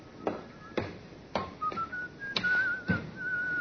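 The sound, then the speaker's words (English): A man whistles a wavering, sliding tune at moderate volume, punctuated by a series of sharp thuds spaced roughly half a second apart, like footsteps; no one speaks. “It's the check you've been waiting for, that fellow there, whistling.”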